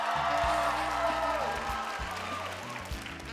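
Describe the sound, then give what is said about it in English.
Audience members under the age of 25 clap and cheer when asked for a round of applause, a steady, dense wash of applause lasting a few seconds, with a low, stepping bass line pulsing underneath. “Round of applause if you are under the age of 25.”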